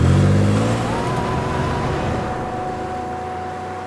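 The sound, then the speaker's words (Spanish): A car engine revs loudly as the household's car is driven off into the night, its low rumble gradually fading as the car pulls away, leaving a steady whine trailing off. No voices are heard. “Entonces escaparon con el auto de la casa y, sedientas de sangre y algo más, desaparecieron en la noche para buscar a su víctima.”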